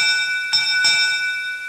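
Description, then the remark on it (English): A bright first call bell is struck twice in quick succession, its clear ringing tones sustaining and slowly fading, fairly loud with no voices. “Let's ring the first call bell.”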